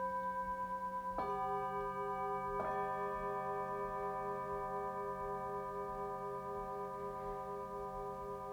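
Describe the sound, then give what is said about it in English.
A gong struck twice with a singing bowl mallet, each hit bright and piercing, leaving long sustained metallic overtones that ring on steadily and slowly fade, heard alone. “So they're just with a normal gong mallet. Then just more of a piercing with a singing bowl mallet.”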